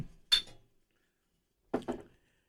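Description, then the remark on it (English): Glasses of beer of close to 7% strength clink together in a quick toast: one bright clink, a pause of over a second, then a second pair of close clinks, fairly loud with no talking. “This is close to 7%, boys. All right, there you go. Right. To vinyl analysis, cheers.”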